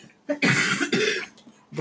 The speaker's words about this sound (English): And then the last thing, wait, I have to cough.